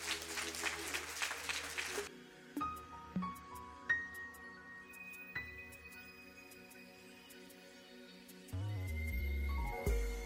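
An audience at the Progressive Missionary Baptist Church bursts into loud, dense applause of praise to the Lord for about two seconds, then the clapping stops abruptly and quiet sustained musical tones carry on alone with a few soft knocks.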